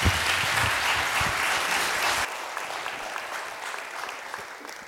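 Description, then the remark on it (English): An audience claps steadily for a group who shared about their trip, a dense crackle of many hands at a fairly loud level, then the applause thins and softens partway through as it begins to taper off. “So let's give them a round of applause first.”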